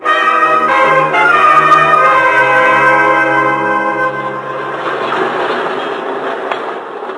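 A subway train rolls along the rails with a loud, sustained metallic squeal of ringing tones, which gives way to a steady, noisy rumble. No voices are heard.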